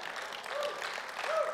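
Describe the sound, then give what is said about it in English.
Steady applause from an audience, a dense, continuous wash of many hands clapping at a fairly even loudness, with a faint voice or whoop rising briefly above it. “If you ain't clapping, you're going to make me work tonight.”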